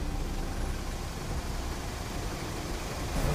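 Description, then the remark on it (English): A steady, dense rumble of evening traffic: engines hum and road noise washes continuously as a limousine crawls slowly along among other cars, with no voices and no distinct pauses. “As the limo crawls through evening traffic, the Batman follows across rooftops.”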